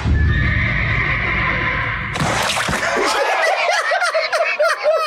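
horse neighing

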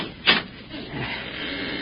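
door being opened

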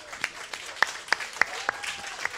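audience round of applause

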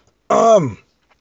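cough and throat clearing

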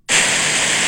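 pink noise

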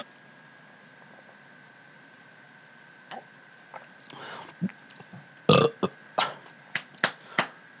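burp

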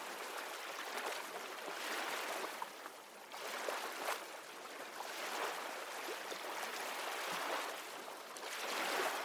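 gentle ocean waves lapping

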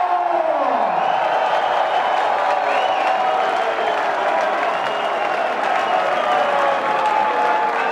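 audience applause and cheering

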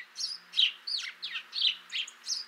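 house sparrow chirping

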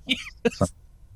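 coughing

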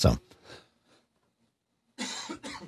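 cough or throat clearing

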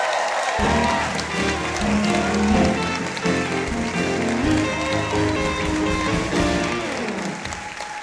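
audience applause

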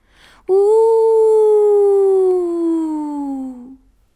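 wolves howling

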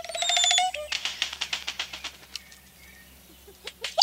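oropendola song

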